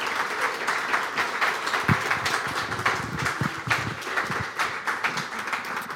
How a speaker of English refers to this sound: Why don't we welcome her with a little applause? Give her some encouragement.